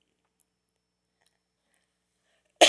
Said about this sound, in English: Excuse me. I guess when I start getting myself to laughing, I guess I start coughing.